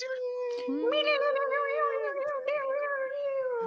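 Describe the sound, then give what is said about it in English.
A cat lets out one long, drawn-out meow that wavers in pitch for several seconds, loud, with no talking around it. “So I'll call this segment, hey Ben, here's my cat.”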